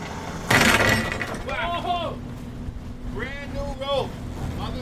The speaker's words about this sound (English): The rope has just snapped completely in half, whipping violently across the deck as the rest of the line and whatever traps are still attached plunge back into the water.